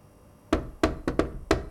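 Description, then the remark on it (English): Five firm knocks on an office door at night, fairly loud, in an uneven rhythm with a quick double rap in the middle, with no voices. “She thought the knock was someone from the call center.”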